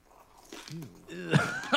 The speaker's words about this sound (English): So what we're watching here for audio listeners is someone just munching on a bunch of different candies and treats. Macarons. Most of them are crunchy. Cookies, looks like.